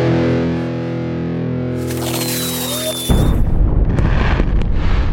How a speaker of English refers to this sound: This jingle was so bad that we just kept running it every year. It's legendary.